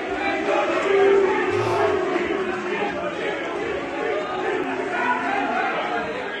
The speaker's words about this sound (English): This is the Lords crowd when the players are walking off, I think, for lunchtime.